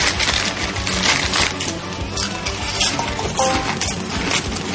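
A phone notification chimes with a couple of short, mid-pitched tonal beeps, set against a steady clatter of cutlery and dishes from people eating dinner.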